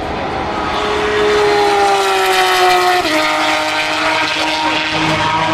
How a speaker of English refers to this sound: That was a Porsche 911 RSR. As someone said to me the other day, yes, they've admitted defeat. They finally turned a Porsche 911 into a mid-engine car instead of a rear-engine car by moving the gearbox to the other side of the engine.